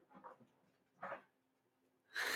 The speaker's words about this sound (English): Do you want to go deal with those dogs?